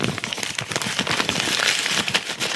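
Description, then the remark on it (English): Sheets of paper being rustled and shuffled, a dense, continuous crackling and crinkling that stays fairly loud throughout, with no voices. “That's a lot of paper to go through.”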